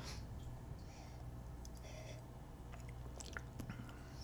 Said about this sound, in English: Let me try to take another couple sips.